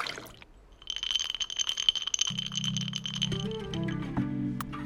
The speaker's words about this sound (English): Glass, ice, pour.